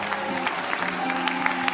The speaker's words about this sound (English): Come on, why don't you clap your hands all across this place right now?